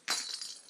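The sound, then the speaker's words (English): A cat toy with little bells inside gets a sudden shake, giving a bright, high jingling rattle that keeps shimmering briefly. It is fairly quiet, with no voices. “That's a cat toy with jingly jangly toys inside for the cats.”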